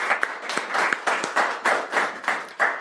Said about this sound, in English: Let's have one more round of applause for the Q&A.